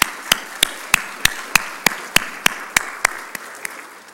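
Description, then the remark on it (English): A church audience applauds at a morning service for people who made confessions: sharp, evenly spaced claps ring out about three times a second over a steady wash of softer group clapping, tapering slightly toward the end. No one speaks. “Let's give them applause this morning.”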